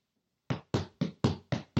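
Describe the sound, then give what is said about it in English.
Heavy stomping footsteps of Jesse Eisenberg's Mark Zuckerberg stomping away in a movie scene: six loud, thudding impacts in a quick, steady rhythm, beginning after a brief moment of silence, with no voices. “Okay, all right, that's Jesse Eisenberg's Mark Zuckerberg stomping away.”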